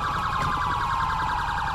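A police car siren, stuck on, blares nonstop in fast, repeating up-and-down yelps, loud and steady, over a low rumbling hum, with no one speaking.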